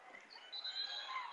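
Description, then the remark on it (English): A referee's whistle at a basketball game involving the Mustangs gives a shrill, high-pitched blast lasting about half a second as the ball is knocked out of bounds, rising out of a steady wash of crowd noise that continues after it ends. “And we've got a whistle.”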